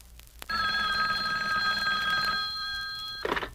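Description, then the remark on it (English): A hotline telephone, used to inform Batman and Robin of an emergency in Gotham City, rings in one sustained, loud metallic burst lasting nearly three seconds, then cuts off, followed by a brief clatter like a receiver being picked up. “Now, hand me the hotline phone.”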